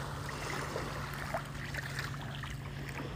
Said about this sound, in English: Ew, I'm gonna rinse off my feet. Sorry about that. It's like I stepped in something was squishy.